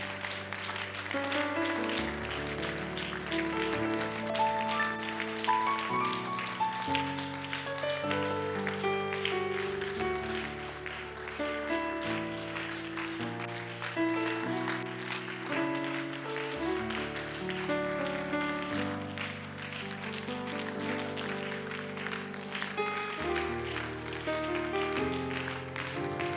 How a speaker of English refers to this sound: As I clap my hand, in 1 minute you take your seat, clap your hand and pray.